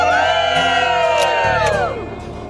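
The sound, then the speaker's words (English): A crowd on the outdoor plaza of the Today show in New York City cheers and whoops loudly on a hot, steamy day, many overlapping high voices sustained for about two seconds before the noise starts to fade, with no clear words. “What a great crowd out there.”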